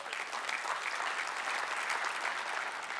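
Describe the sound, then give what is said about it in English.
An audience claps steadily throughout, a dense, even wash of many hands with no pauses or voices breaking through. “So now, yeah, you can clap for that.”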